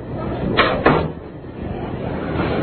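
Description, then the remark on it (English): A door swings shut with two quick wooden knocks close together, a soft latch click followed by a firmer thud, then a quiet room hum. “Close the door after you”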